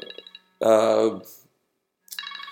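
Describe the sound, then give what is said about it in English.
A phone rings with bright, rapidly pulsing electronic tones that break off and then resume. A louder, rich voice-like sound fills the gap between the rings. “And that, my phone's ringing here.”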